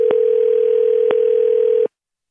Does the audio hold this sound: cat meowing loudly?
no